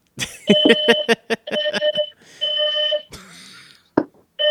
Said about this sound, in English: My lady's also cooking, so she could have set the alarm off.